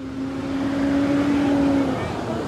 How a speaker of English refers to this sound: Before long, the bus pulls up.